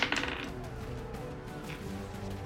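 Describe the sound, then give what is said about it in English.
Dice clatter and tumble briefly at the start with bright, rapid clicks, rolled for a charisma saving throw with disadvantage, the first roll showing a 6, then settle within half a second, leaving a low, steady background hum. “All right, first roll is a 6.”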